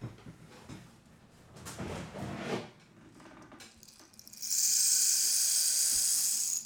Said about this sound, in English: It's exactly what rain sounds like. It's not at all what rain sounds like. It's a rain stick.